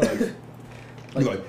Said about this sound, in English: He's like, and don't give me them weak ass coughs. Give them strong ones. Strong ones.